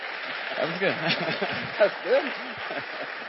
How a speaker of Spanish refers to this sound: let's all clap and thank God for them.